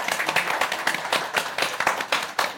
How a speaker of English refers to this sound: That's half the book. Can we just give you a clap? Yeah.